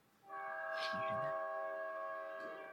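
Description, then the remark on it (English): The horn of a passing train about a block away blares in one long, steady chord, starting abruptly and holding loud for over two seconds before it begins to fade slightly at the end. “Sorry, there's a train going by.”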